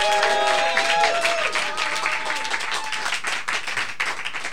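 An audience whoops and claps at the same time, welcoming a performer to the stage: loud, sustained applause mixed with high, rising whoops and cheers that slide in pitch, the clapping dense and steady throughout.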